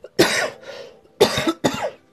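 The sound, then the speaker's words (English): Three harsh coughs in quick succession, the first one trailing off with a breathy rasp before two more sharp bursts follow. “But again, technically tomorrow, as I would say, excuse me, I got a cough.”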